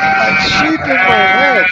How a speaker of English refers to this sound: I can hear a sheep.